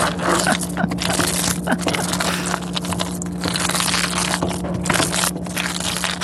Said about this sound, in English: play us a recording of the sound of his cheese sauce